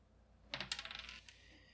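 Hot pink dice clatter across a hard surface, a quick burst of sharp rattling clicks that bounce several times and settle within about a second, fairly loud with no voices.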